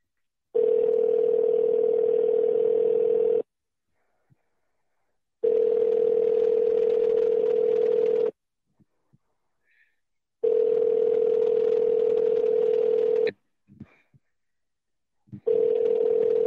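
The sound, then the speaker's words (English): A telephone ringback tone sounds over the line of a call to a business's back line: four long, steady, buzzy tone bursts of about three seconds each, separated by short silent gaps, with no voices. “Can you hear it ringing?”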